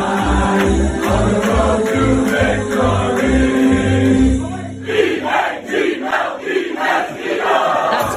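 A crowd of about 300 people in jerseys at a bar in Boston sings a football fight song together after an A.J. Brown touchdown, a loud, steady, rhythmic chant, then breaks into rowdy rhythmic shouts and cheers toward the end.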